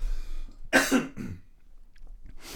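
A short, forceful cough with a rough follow-up throat clear, fairly close and loud, followed by a quieter rasp near the end, with no talking.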